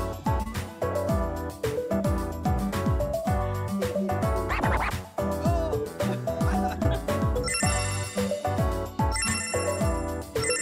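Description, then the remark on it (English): A bells sound effect: loud, continuous ringing of bells with bright, layered metallic tones and rapid repeated strikes, sustained for about ten seconds with no voices. “Did you add the bells in?”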